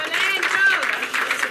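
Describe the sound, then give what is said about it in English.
A steady wash of audience applause for a couple as they make their way back to their seats, dense and fairly loud throughout, with some voices or cheers mixed into the clapping. “Please, as they make their way back to their seats, let's give them a moment of applause.”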